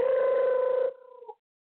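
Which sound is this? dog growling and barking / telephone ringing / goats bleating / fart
telephone ringing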